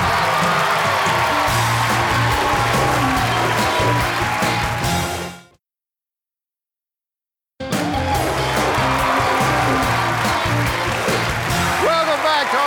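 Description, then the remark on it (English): Loud, sustained studio audience applause on a game show after a contestant's correct answer wins $12,500, with dense clapping and some cheering, cut off abruptly for about two seconds of silence before a second burst of equally steady applause resumes. “By the way, I wouldn't have clapped me for that.”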